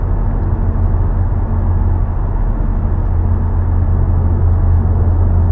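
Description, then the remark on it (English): A car drives along a road, its steady low engine and tire rumble droning continuously and loudly, with no change in level and no voices. “Driving, I see a little bit more cars in the road.”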